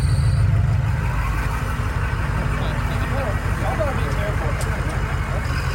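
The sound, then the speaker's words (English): A loud, deep car or truck engine rumbles steadily, a low throbbing drone that holds constant throughout, with faint voices murmuring in the background. “Come on, these are all different cars and trucks.”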